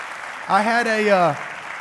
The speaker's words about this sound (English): Would you guys give them a hand clap?